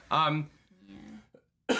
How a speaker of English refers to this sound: Sorry, y'all. I am dealing with a pretty bad cough. The remnants of that COVID is stuck in me, so... We're feeling a lot better, but it lingers. Yeah, if I cough or if I sound a little bit different today, I do apologize.